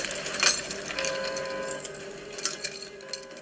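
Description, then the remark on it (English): Launch keys being inserted for ICBM launch control: a sharp metallic click and rattle near the start, then a few lighter clicks spread out afterward, over a faint steady hum, with no talking. “insert launch keys.”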